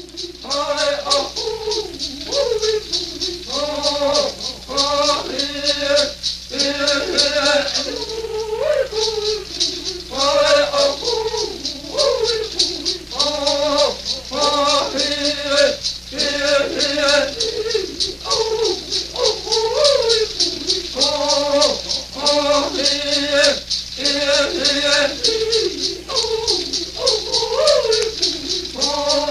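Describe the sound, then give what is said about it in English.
Male voices sing a Navajo night chant in short, repeated rising and falling phrases, over a steady, continuous shaking rattle that stays loud throughout. “Next up is a Navajo night chant.”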